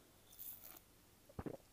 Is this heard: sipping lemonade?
yes